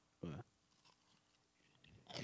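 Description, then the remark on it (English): Two loud, crunchy bites very close to the microphone, one near the start and another at the end, separated by a stretch of quieter mouth and chewing noises. “Crunch right into the mic.”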